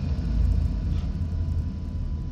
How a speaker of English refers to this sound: There's one right here. There's actually two of them in here. I use this one as well. Big explosion.